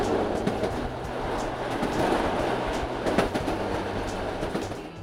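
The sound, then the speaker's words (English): A train rolls steadily along the rails with a continuous low rumble and faint rhythmic clickety-clack of the wheels, with no one speaking. “So he got on a train to see America.”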